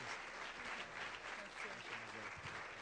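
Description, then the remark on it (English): A church audience applauds steadily to welcome guests, a dense wash of many hands clapping at an even, sustained level with no clear gaps, faint voices murmuring underneath. “Come on, give them a big hand.”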